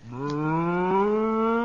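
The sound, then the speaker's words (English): A cow named Bossy lets out a single long, steady, fairly loud moo in a barn, its low tone rising slightly as it holds, with no one talking. “I've been milking this cow for 3 months, and I think I can manage.”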